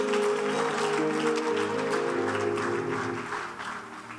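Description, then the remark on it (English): An audience claps hands in praise to God in a steady, dense wash of applause that holds loud throughout, with a sustained musical tone underneath and fading slightly toward the end. “When they say they should clap, it's as if when they clap the coronavirus, clap your hands and give God some praise in the house.”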